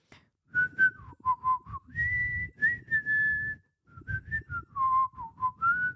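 A person whistles a short song melody, with quick staccato notes, a couple of held tones and a brief pause midway, no talking over it.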